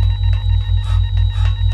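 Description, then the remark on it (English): An alarm blares loudly and continuously, a low droning buzz pulsing in a quick steady rhythm about four times a second, with thin high ringing tones layered over it. No one speaks. “Hope there's no alarm, and... Ugh, why did I even say that?”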